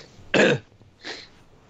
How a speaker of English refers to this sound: Why are you coughing? You know why I'm coughing.